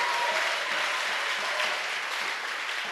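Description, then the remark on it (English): A crowd applauds for the Lord, many hands clapping together in a dense, continuous wash of sound that holds at an even level for the whole stretch, with no voices standing out. “Let's clap for the Lord.”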